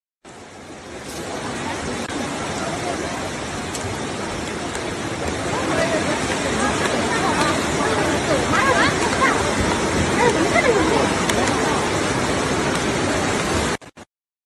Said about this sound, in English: So there are lots of videos of several different poorly built facilities with rain pouring in from the roof